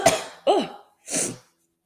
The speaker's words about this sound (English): Oh my God, I was stifling that cough. I'm so sorry.